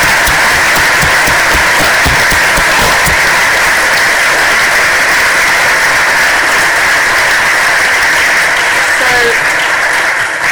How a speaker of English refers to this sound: Thank you very much all for coming and asking your questions. A round of applause. Thank you. Thank you.